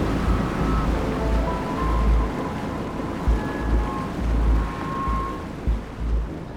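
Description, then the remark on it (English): A ship moves through the sea with a steady low engine rumble and a constant wash of waves, faint tonal hums drifting over the noise. No one speaks. “The bus and then the ship push her onward.”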